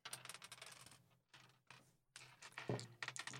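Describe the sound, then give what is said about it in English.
Dice rattle and clatter in quick, jittery bursts as someone fidgets with them without actually rolling, with a couple of brief pauses before the clicking resumes; no one speaks. “If you hear my dice rolling, I'm just fidgeting, so I'm not actually rolling.”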